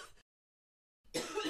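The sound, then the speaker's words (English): A forceful cough breaks a moment of silence, preceded by a faint trailing burst. Both are short, harsh and breathy, with no talking. “I will randomly wake up and cough for like 30 seconds.”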